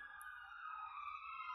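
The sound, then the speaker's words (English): Passing emergency vehicle sirens wail in a sustained, high, slightly wavering tone, fairly faint, over a low steady rumble, with no one speaking. “I'm going to let these sirens pass.”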